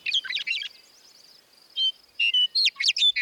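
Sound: bird song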